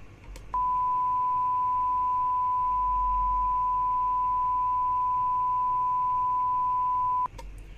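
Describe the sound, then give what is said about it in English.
A breaking-news sound effect: a single loud, steady high-pitched beep tone holding unbroken for nearly seven seconds before cutting off, with no voices over it. “Breaking news. I need a breaking sound. Oh, I think I got one.”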